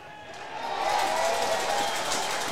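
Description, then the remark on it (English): A big stadium crowd roars in cheer as Menzel's kick goes straight through for a goal in an Eagles versus Crows football match, the noise swelling quickly from a murmur into a dense, sustained wall of sound that stays loud. “The crowd did tell us it's a straight through.”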